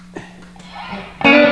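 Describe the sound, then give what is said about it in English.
Clean electric guitar tone through an amplifier with the VVR turned all the way up: a few soft plucked notes over a faint steady hum, then a loud, bright strummed chord that rings out sustained to the end. “You know, if I turn this all, well, if I turn this all, the VVR all the way up, it becomes a very clean.”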